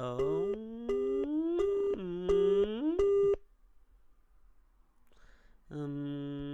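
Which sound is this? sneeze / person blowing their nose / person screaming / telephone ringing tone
telephone ringing tone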